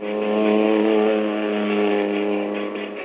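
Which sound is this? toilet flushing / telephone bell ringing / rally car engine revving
rally car engine revving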